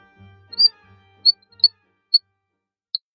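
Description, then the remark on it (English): A frog, Chrysixylus quangi, known for singing like a bird, gives a string of bird-like calls: a low warbling croak followed by several short, sharp, high chirps and whistles spaced irregularly, loud against a quiet background. “They're saying all sorts of weird, clicky, chirpy, whistly things. They definitely say more than your average frog.”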